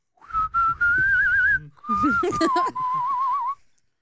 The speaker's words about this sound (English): Get the fuck out of here, whistling.